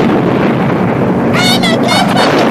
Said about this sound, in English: Just then, a loud explosion is heard.